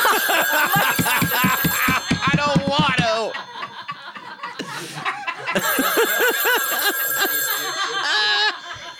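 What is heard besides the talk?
telephone ringing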